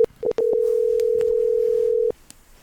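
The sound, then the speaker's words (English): A phone line sounds a few quick beeps, then one long steady electronic tone lasting nearly two seconds, as a call is placed and rings. It is clear, with no voices. “we're going to get Chris on the phone here and have him run that back with us”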